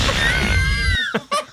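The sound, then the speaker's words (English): A loud, rumbling fart sound effect lasts about a second, with a whiny tone sliding downward over it, then cuts off into two short, sputtering puffs. “I'm so glad that's one of those sound effects that didn't catch on, though.”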